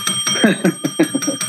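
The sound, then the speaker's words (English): A small diner bell is rung rapidly over and over, bright repeated dings overlapping into a sustained metallic ring, fairly loud. “Now I don't have the formal bell, but I've got the little diner bell here for you.”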